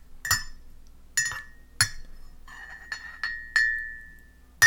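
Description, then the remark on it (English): A spoon clinks against a mug of hot drink about seven times in an uneven rhythm, each sharp tap leaving a bright, ringing tone that fades. No one speaks. “You were drinking it with a spoon.”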